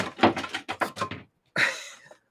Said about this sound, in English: It's okay. It's okay, baby. My daughter just knocked over. It's okay. It's okay. Yeah. It's okay. They're all good. Plastic, baby. It's okay. They're not glass.